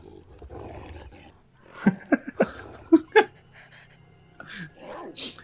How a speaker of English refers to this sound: Oh, it's much worse. Okay, so they are actually using, like... That's a real dog, right? Oh no. Yeah. I can't tell if it's a puppet. Oh, it bit her.